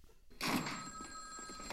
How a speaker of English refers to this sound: and damn you, the phone is ringing.